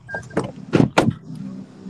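Car wash background noise heard over a caller's phone line: a steady low mechanical hum broken by several loud, hissing bursts of spray or air, with no one speaking.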